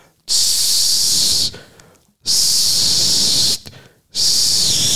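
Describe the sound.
A hot air balloon burner firing up, heard at around 3 or 4 o'clock in the morning from a cave hotel, in three loud, sustained hissing roars, each lasting about a second, separated by brief quieter pauses; the last blast is cut off at the end.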